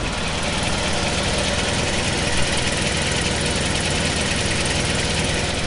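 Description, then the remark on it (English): A Bentley car engine with an automatic choke idles steadily after warming up, just after the choke is knocked off: a dense, even rumble with a faint rhythmic ticking running through it, loud and unbroken with no voices. “I'll knock the choke off now and see what happens.”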